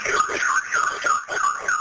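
A home security alarm blares continuously during a break-in attempt at the front door, its electronic tone rising and falling in rapid, repeating warbles, loud with no pauses across the short stretch.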